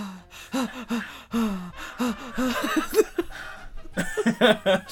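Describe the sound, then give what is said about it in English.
A voice huffs out rhythmic, breathy inhales and exhales in a quick melodic pattern, breathing in time to The Office opening theme, with gasping, laugh-like bursts. “Number one, he changes his breathing to match the Office opening theme. Inhaling and exhaling in time.”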